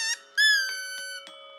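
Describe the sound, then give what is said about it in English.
A squeaky clown-nose honk from a Halloween clown costume: a brief chirp, then one bright, nasal, buzzy honk that holds for about a second before thinning into a fainter lingering tone. No one speaks. “He honked his nose once.”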